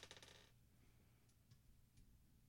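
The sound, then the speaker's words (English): An eight-sided die, rolled for hit dice during a short rest in a tabletop game, rattles and clatters across a hard surface in a quick burst, followed by a few faint, scattered clicks as it settles. Quiet, with no talking. “What you rolling there, buddy? He's rolling a D8 for some reason.”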